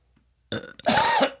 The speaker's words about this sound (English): I cough, you burp.